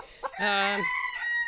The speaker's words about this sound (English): Sounds like a chicken gone bad. A street chicken is a chicken that belongs to himself. He doesn't belong to anybody else. And he lives by his wits and thumbs his nose at rules and regulations.